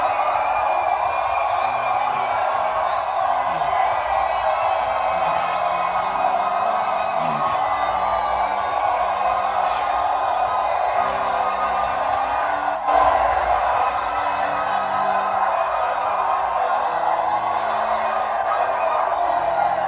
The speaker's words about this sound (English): Give him the praise. Three cheers.